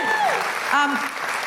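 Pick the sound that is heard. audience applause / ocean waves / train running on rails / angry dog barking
audience applause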